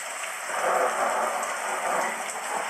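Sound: thunder and rain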